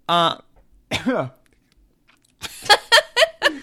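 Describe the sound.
A short voiced sound and a falling vocal groan, a pause, then a run of five quick, harsh bursts of rough coughing, fairly loud and uneven in rhythm, as a man coughs on another person to avoid the microphone.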